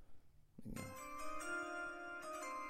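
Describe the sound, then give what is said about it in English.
A bright electronic NFL draft announcement chime rings out, its tones sustaining and overlapping, with a second tone struck near the end. It is clear and fairly loud, with no one speaking. “I just want the ding, ding, ding. All right, here we go. The chime.”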